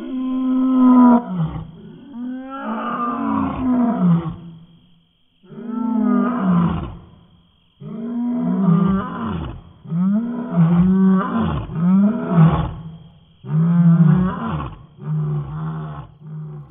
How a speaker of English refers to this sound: move it up in pitch or down in pitch, stretch it out a little bit, maybe add just a little bit of lion to the elephant so that it becomes something else that fits with the drama of the picture as the audience experiences it.